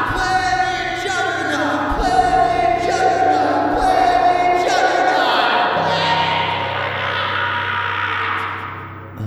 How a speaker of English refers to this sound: And a disorienting amount of light and sound pours in, and you hear, violently chanted by an unseen crowd